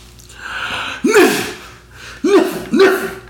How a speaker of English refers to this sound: How did you know I was going to sneeze, sir?